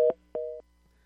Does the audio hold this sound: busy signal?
yes